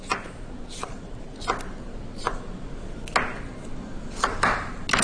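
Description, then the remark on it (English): A knife chopping bell pepper on a cutting board, with a series of crisp knocks in an uneven rhythm, about eight strikes over a few seconds and no voices. “Now, as you're just chopping this, getting this ready to go”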